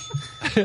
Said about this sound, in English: ring the bell every time I do a dick joke. Okay. I have the bell.